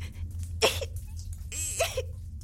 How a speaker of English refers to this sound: Look at me, for example. I have this little cough that just won't go away.